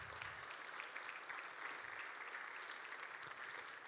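A church audience claps steadily after a testimony, a dense wash of many overlapping hand claps at an even, moderate loudness that holds for the full few seconds without a break.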